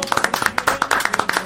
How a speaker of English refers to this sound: Deserved applause from everyone in the room.